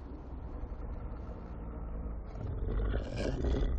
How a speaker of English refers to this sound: Now this is the wolf that was inspired very much by, if you look in the graphic novel